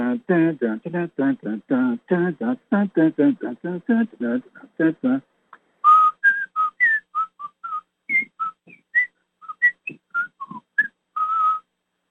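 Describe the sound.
A rhythmic, voiced run of vocal sounds gives way to a person whistling a bouncy tune, with short clear notes hopping between pitches for several seconds.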